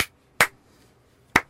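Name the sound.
single hand clap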